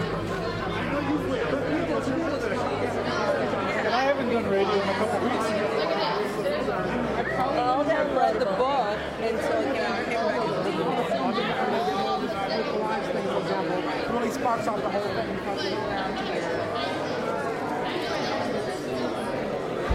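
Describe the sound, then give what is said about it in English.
Dense crowd chatter fills the lobby of the Michigan Theater in Ann Arbor: many overlapping voices blend into a steady, loud babble with no single speaker standing out, holding an even level throughout. “Boy, it sure is a crowd here.”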